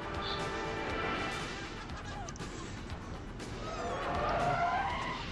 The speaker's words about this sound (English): Hey, real car crashes. Mm-hmm. Oh, my gosh. Yep. They trashed a lot of cars in this movie.